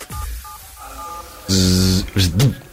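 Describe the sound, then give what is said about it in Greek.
On the Sok FM Morning Show radio sound quiz, a voice imitates a door closing: a loud, hissy buzzing burst followed by a short rising-and-falling voiced swoop, preceded by faint steady electronic beeps. “Όταν το κλείνεις. Κλείνει την πόρτα.”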